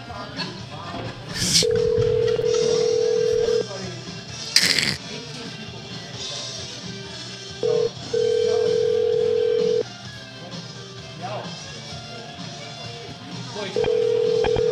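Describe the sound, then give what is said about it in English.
A phone line rings back with a steady buzzing tone in two-second bursts separated by pauses, repeating several times with no answer, preceded by a couple of sharp clicks as the call connects. “Now I've got to call corporate to complain about them not picking up their fucking phones.”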